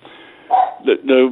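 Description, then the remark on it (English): A Labrador dog barks three times in quick succession, loud, harsh, mid-pitched barks, the last one longer and fuller than the first two, after a brief quieter stretch. “Is your dog upset not to be in there?”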